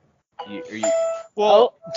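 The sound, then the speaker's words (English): A loud electronic streaming app startup chime plays from a phone speaker with the volume on, a short run of bright sustained tones lasting about two seconds, with a voice briefly overlapping near the middle. “That was real loud. That's Funimation. My phone's volume was on.”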